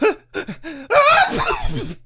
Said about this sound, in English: Oh dear, look at that. I sneezed up an alien.